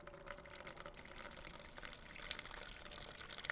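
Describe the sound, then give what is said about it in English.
Water from melted ice pours and splashes out of a birdbath through a missing piece of its rim in a steady, continuous stream, a soft rushing trickle with small bright splashes, heard alone without any voices. “Just as he touched it, the ice immediately melted and began pouring out of the missing piece of the rim.”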